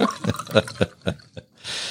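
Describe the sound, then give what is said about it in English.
Bourbon glugs out of a bottle into a glass in about six quick, hollow gulps, then settles into a brief steady hiss of pouring liquid. No one speaks. “We have a sound bite of the pour.”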